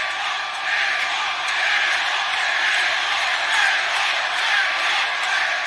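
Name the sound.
wrestling crowd chanting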